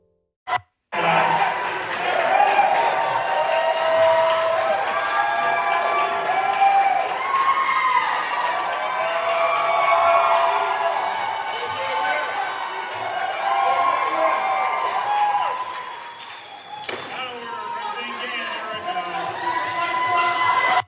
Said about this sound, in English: that was the cheering from the gallery as he walked in